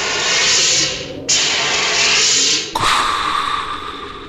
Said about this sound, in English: Hail Ming protocol in effect. Opening portal.